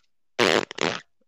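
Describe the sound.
A voice imitates a fart with a short, sputtering, semi-wet raspberry: two bursts in quick succession lasting under a second, loud, with no other sounds around it.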